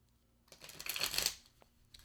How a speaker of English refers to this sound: So with this Rider-Waite deck, I also prefer to shuffle in a standard card shuffle. And I bridge the cards so that helps them to bend back into their natural position